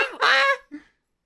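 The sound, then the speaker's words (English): A human voice imitates a hissing goose with one loud, harsh, raspy honk-hiss, then a short, quieter grunt-like follow-up, heard alone. “Lathander hisses and doesn't talk.”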